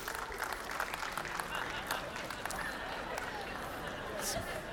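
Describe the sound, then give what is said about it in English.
A church audience across several campuses applauds steadily in answer to whether LeBron James is the greatest of all time, a dense wash of many hands clapping at once with scattered sharper claps poking through, sustained at an even level across the whole stretch. “And so how many of you, just round of applause at all of our campuses, wherever you're joining us, how many of you would say that LeBron James is the greatest of all time?”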